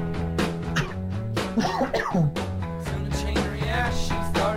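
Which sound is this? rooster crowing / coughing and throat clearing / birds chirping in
coughing and throat clearing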